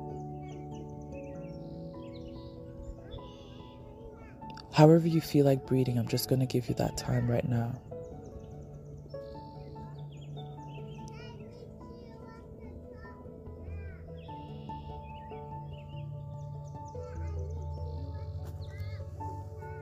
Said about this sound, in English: While you hear the voices of these beautiful children playing in the park, you hear the sound of the birds chipping, you hear the wind blowing, that breeze.